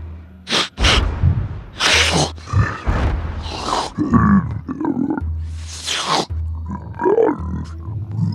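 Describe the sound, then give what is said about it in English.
A voice imitating two ice trolls lumbering from the northeast, sniffing around and speaking to one another: deep, guttural grunts and rumbling growls mixed with sharp sniffing bursts, coming in uneven throaty exchanges over a low steady drone. “Very guttural, speaking to one another.”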